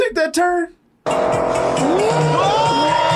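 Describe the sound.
A short burst of voice, a brief pause, then a loud roar of a sports car skidding around a turn, tires squealing in rising and falling wails over dense engine and road noise.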